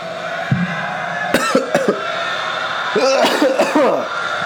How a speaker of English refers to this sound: I apologize for the coughing, people.